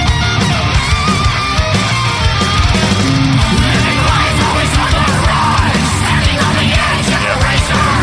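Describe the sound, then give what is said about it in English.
Loud, dense heavy metal with distorted guitars and pounding drums driving a riff, a harsh screamed vocal tearing over the top, sustained and unrelenting throughout. “Some dude starts screaming at me.”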